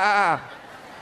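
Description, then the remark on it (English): An audience, told to turn to their neighbors, imitates a sheep with a single short, loud, wavering "baa" lasting about a third of a second, then it drops away to faint background noise. “I want you to turn to your neighbor and go, bah.”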